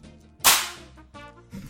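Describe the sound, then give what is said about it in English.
A clipboard drops onto a hard surface with a single loud, sharp slap, followed by a brief fading rattle and a couple of softer knocks. No one speaks. “Do you want me to drop my clipboard again? Yeah, sure. For effect.”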